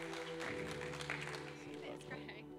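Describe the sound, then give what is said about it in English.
An audience claps steadily to welcome a woman coming up to share, a dense wash of applause lasting a couple of seconds, with a sustained musical tone and some crowd voices underneath. “Give her a big clap as she comes on up to share.”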